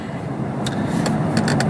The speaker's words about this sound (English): a dead stop here in the middle of the freeway